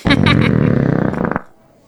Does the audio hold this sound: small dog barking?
no